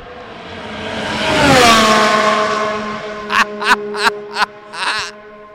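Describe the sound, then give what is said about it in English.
Logan Sargeant's Formula One car screams past at high speed on the start-finish straight during pit stop practice, its loud engine whine swelling and dropping in pitch, followed by four or five sharp popping bursts as it revs and pulls away with the tyres smoking. “Oh, my God, there's a car coming.”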